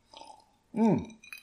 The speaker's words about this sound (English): This is a drinking break. All right, let's have a little sip, and we'll talk about it so far, huh?